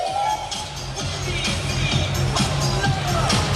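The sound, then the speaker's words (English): A large indoor arena crowd of just under 8,000 people at an NBL basketball game in Adelaide murmurs and roars steadily, with dense overlapping voices and sharp squeaks and thuds from the court cutting through at a fairly loud level. “Good crowd in. Almost 8,000 people, just under 8,000 in the stadium tonight.”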